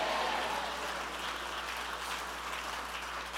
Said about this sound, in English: If you believe it, clap your hands and shout amen.